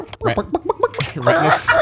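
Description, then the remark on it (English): A person makes a quick series of clucking, chicken-like vocal noises, choppy, breaking into a higher squawky sound toward the end. “Chicken noise. It's a chicken vault.”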